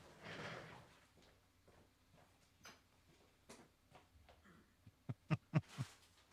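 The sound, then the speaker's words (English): An unhinged studio door opens with a soft sliding whoosh, followed by scattered light clicks and then a quick series of sharp clunks as it shuts. No one speaks. “That magic door right there in the studio.”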